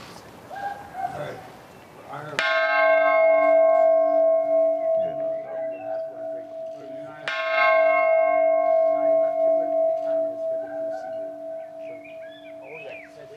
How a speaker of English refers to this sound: What you're seeing there is the peace bell, and we've talked about that. That's an important part of this visit. He'll ring the bell alongside the Irish president there. That the bell unveiled to mark the 10th anniversary.